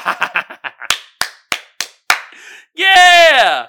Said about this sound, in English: Give yourself a round of applause because I got the best audience out here.